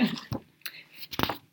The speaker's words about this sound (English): And the next one is another ebook, I believe, flipping through my pages here. Rustling pages.